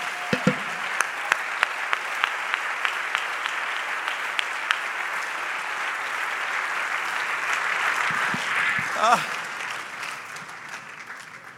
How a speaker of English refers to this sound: I wonder if you would clap your hands unto the Lord in this place.